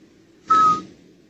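An emu named Rodney, on the loose and standing at a door, gives a single short whistling call, a steady breathy note lasting a fraction of a second, fairly loud against a quiet background with no talking.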